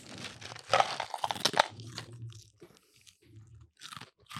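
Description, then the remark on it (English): Loud crunching of dry sweetened wheat and rice cereal with cinnamon being chewed, with a burst of sharp crackly bites early on followed by softer, intermittent munching. “Sweetened wheat and rice cereal with cinnamon. Ooh, let's try it.”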